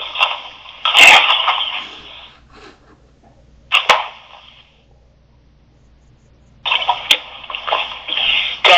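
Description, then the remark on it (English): Three bouts of harsh coughing with quiet pauses between them, the first the longest and loudest, the last running to the end. No one speaks. “But, excuse me, got a cough.”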